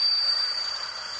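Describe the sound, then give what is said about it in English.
A steady, cicada-like high-pitched buzzing drone with a thin whining tone riding on top, holding at an even loudness for just over a second with no voices; a sample sound played to match the kind of tinnitus heard in the head. “But one of these has to be like, is this the kind of sound? Cicada.”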